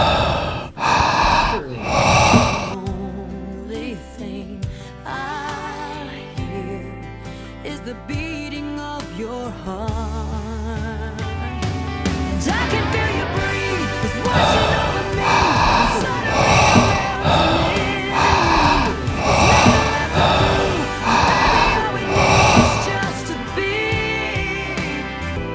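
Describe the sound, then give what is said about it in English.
Heavy, rhythmic breathing into the microphone, repeated puffs of air that swell and fade over a steady musical background. “Dude, why do I hear breathing in the...”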